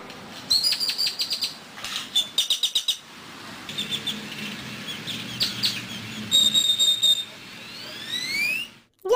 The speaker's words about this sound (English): A grackle is a bird, a blackbird that looks like they've been slightly stretched out.